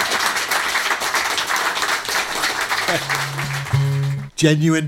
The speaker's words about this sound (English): genuine Pembroke Dock applause there.